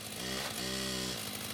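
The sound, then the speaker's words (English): A chainsaw engine drones loudly as men in white suits cut up a potting shed in a backyard, its buzzing pitch dipping briefly in the middle before revving steadily again, with no voices over it. “there are men in funny white suits in the backyard cutting up this potting shed with chainsaws and putting it into radioactive containers.”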